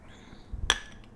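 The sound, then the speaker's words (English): A single bright clink of glasses of water touching in a toast, with a short high ringing tone that fades out quickly. A soft thump comes just before it, and no one speaks. “That's a toast to our listeners.”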